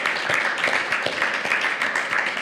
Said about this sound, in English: I think that deserves a round of applause, folks. Anything that deserves a round of applause?